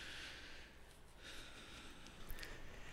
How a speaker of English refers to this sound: Let me blow my nose real quick.